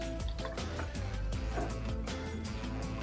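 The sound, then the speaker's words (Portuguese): Sparkling water is poured over ice and mint leaves while making a mojito, a steady pour with a fizzy, bubbling rush, set against continuous background music. “Vamos de gelo. Completa com água com gás.”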